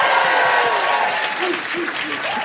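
A live audience applauds a musician steadily, a dense wash of many hands clapping at a fairly loud, even level throughout, with a few faint voices mixed in underneath.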